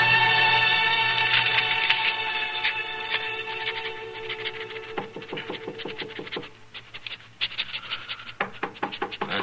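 Sharp knocks on a marshal's office door sound in two bursts of quick raps, cutting through sustained, swelling orchestral music that fades toward the end.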